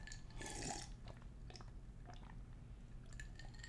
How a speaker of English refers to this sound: So forgive me. I'm going to take a big gulp of water here. So it's super classy.